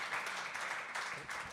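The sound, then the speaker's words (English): A crowd applauds steadily after a remark praising the best fan base in baseball, dense overlapping claps forming a continuous bright wash of sound that stays loud throughout, with slight swells as the clapping surges. “Best fan base in baseball. Clap for that.”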